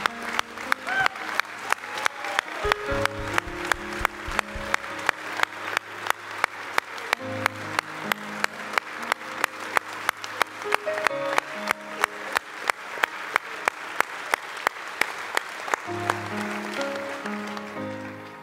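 A church audience gives a clap offering to the Savior, Jesus Christ, after communion at a morning service. The claps are loud and land in a steady, even rhythm at regular beats over sustained instrumental music with low bass notes, continuing throughout.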